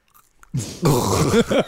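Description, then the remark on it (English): Loud crunching as a man bites into and chews a crunchy cat treat for a cat treat challenge, a burst of brittle snapping that continues for about a second, with a faint muffled vocal sound near the end. “Oh, it's crunchy. I didn't expect that.”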